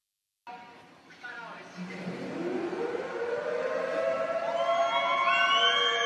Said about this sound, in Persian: صدای آژیر میاد از مسجد، از مسجد خانه اصفهان.